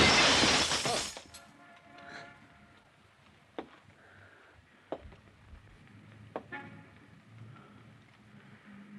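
A window pane shatters in one loud crashing burst, followed by a few scattered tinkles of falling glass fragments against a faint background hiss.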